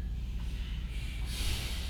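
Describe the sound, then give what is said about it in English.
Airy breathing through the nose during a breathing practice, a slow, very deep inhale into the belly and chest flowing into a rougher, brighter exhale from the belly and chest, steady and unbroken with no talking. “Inhale into the belly and the chest. Exhale from the belly and the chest.”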